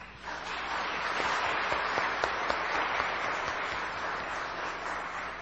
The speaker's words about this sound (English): And over the past year or so, your contributions, we did not want to go without saying our thank you for all the time that you put in during practices and during services. So we'd like to give you a round of applause.